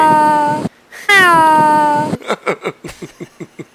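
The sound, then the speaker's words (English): A person imitates a cat, starting with two long, drawn-out wavering meows, then a quick, rhythmic string of about eight short meows, all loud. “I knew you love cats. Meow, meow, meow, meow, meow, meow, meow.”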